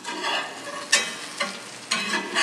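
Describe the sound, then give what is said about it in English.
Food fries in butter in a pan, flipped over and turning golden brown and crispy, with a steady crackling sizzle, punctuated by a few louder bursts as it's stirred or shifted. No voices are heard. “It's looking golden brown on the outside. Crispy. Very. It smells very buttery.”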